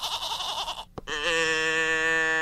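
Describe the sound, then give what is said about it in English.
A toy noise box, called a goat machine and then a cow machine, lets out a wavering, nasal bleat, then, after a brief gap and click, a second sustained electronic bleat with a steady buzzy tone, loud. “In fact, you were just playing with your goat machine over there.”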